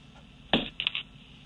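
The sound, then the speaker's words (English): A deck of cards being shuffled for a card reading: one sharp crisp snap, then a quick burst of light papery riffling lasting a fraction of a second, over a quiet background with no voices. “So what I'm doing is I'm shuffling the cards.”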